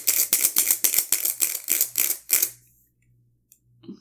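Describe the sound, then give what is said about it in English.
Dice are rolled during a turn in a game, clattering in a quick, rhythmic run of about eight sharp, fairly loud rattling bursts, before stopping abruptly into near silence with a faint low hum underneath. “What the fuck is up with these dice?”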